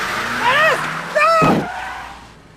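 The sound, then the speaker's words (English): Up close and loud, car tires squeal in two sharp bursts, then a heavy thud lands as a vehicle strikes a person, followed by a fading engine rumble and brief shouting. “So after Dennis hits Charlie with his car...”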